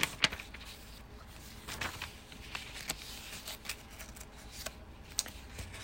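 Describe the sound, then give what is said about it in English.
Quiet paper rustling as thin, humid Bible pages that stick together are turned to Joshua chapter 23, with soft crinkles and brief sharp flicks scattered irregularly over a low steady hiss. “Turning pages. Hold on. They're very humid where I am. My pages are sticking together.”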